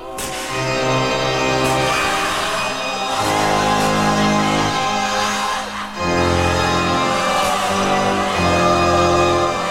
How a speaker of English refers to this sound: Also, it begins with over-the-top, pompous church organs backed by people screaming over the sound of gunfire.